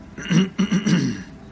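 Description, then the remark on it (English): A man clears his throat, a short run of three or four gravelly, low-pitched rasps lasting about a second, with no talking around it. “The tour guide rifled through the stack before clearing his throat.”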